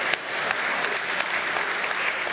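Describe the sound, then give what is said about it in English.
An audience applauds after people are called crazy people, a dense, steady wash of many hands clapping at once, holding an even loudness for the whole stretch with no voices rising above it. “I got applause for calling people crazy people.”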